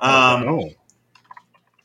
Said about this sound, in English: He's typing. Quality podcast content. You guys are welcome. Okay, sorry, that was very important that I just typed that.